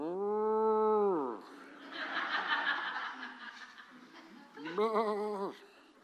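A cow gives a long, loud moo, followed by a stretch of rough, noisy farm-animal sounds, then a shorter second moo near the end, clear.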